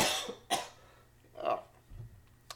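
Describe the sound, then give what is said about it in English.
A person coughs several times in irregular bursts, with a throaty clearing sound between them, all fairly loud with no talking. “I love how I'm complaining because my mom's texting me to get the vaccine as I'm coughing on my podcast.”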